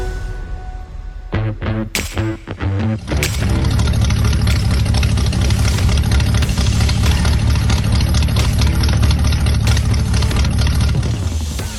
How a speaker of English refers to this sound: Those car sounds were sent in by friend of the show, Colin Schrome. That is his Chevy truck sitting there idling, doing it, running, doing all the good stuff that, you know, trucks are supposed to do.